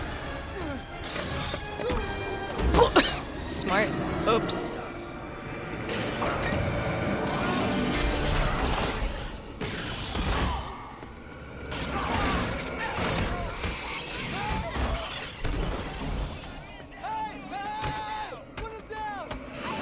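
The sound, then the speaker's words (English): Repeated heavy crashes and bursts of shattering glass as cars are thrown and slammed around, loud and chaotic throughout, with clanking metal and brief voices talking over the din. “Throw cars everywhere. Literally everywhere.”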